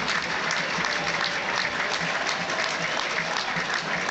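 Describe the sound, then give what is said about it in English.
Steady, dense applause from a football stadium crowd, Stevenage fans applauding Everton's Brian Oviedo as he is stretchered off, a continuous wash of clapping that holds at an even, fairly loud level throughout without rising or fading. “Well, the Stevenage fans also giving Brian Oviedo a good reception as he's stretched off, unfortunately.”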